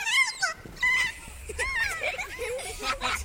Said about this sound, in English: Scientists think the play call had an emotional effect on the birds. Hearing it seemed to put them in a playful mood, even when they were alone.